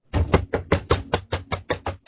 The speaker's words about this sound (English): I knock on the wood.